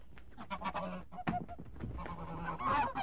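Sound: goose honking and flapping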